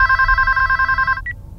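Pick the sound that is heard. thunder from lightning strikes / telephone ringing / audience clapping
telephone ringing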